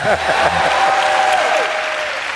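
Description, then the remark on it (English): An audience bursts into steady applause, a dense wash of many hands clapping at once, loud and sustained throughout, with some scattered voices mixed in. “You should clap for me right there.”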